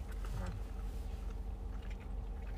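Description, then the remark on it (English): Someone bites into a crispy fried chicken sandwich, followed by soft, muffled chewing with a few faint crunches over a steady low background rumble. “That is a really good sandwich. I'll say the crunch was not... It wasn't that good.”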